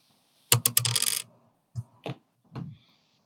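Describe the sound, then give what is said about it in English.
A small hard eight-sided die, rolled for a healing spell in a tabletop game, clatters onto a hard floor, rattling for about a second, then gives a few separate, fading bounces as it settles. Fairly loud, with no voices. “Oh no, I lost the d8 into the floor.”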